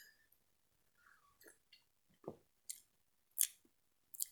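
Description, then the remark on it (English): Quiet sipping from a cup of Burnham Blends Coconut Milk Oolong tea, the first sip: a few short, airy slurps with a soft swallow or gulp between them, set against near silence and no talking. “I'm going to have my first sip of it.”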